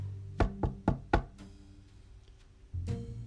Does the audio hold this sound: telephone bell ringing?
no